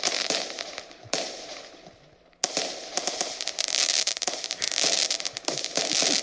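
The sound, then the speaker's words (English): New Year fireworks crackle and bang in a dense, harsh barrage, with sharp bursts that fade briefly before a louder, sustained stretch of popping and sizzling. The sound is loud and slightly distorted, with no voices. “Let's just end with the fireworks.”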